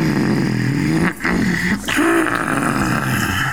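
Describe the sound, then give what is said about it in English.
A voice imitates a long, gravelly yawn, a loud rough growl held for several seconds with two brief breaks, its pitch sliding and wavering in a menacing way. “For those unaware, that's how Tucker sounds when he's yawning. It's gravelly and frightening.”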